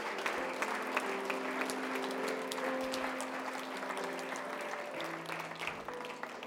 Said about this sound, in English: Let's give God another clap offering. Thank you, Jesus.